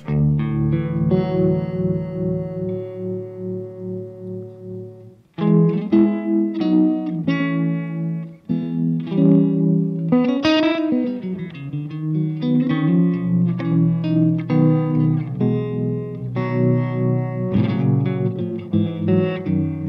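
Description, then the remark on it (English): Electric guitar chords played through a Walrus Monument tremolo pedal, the sustained notes pulsing in steady rhythmic waves, with a short break and then busier strummed phrases, fairly loud with no talking. “Here I've been using the Walrus Monument, which is great.”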